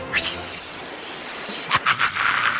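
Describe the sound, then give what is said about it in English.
A long, loud hiss holds steady for about a second and a half, then breaks into several shorter sharp hisses: a sound effect of a huge poisonous snake with a thick, long body and a triangular head slithering and hissing. “Following the sound, a huge poisonous snake slithered over and appeared before them.”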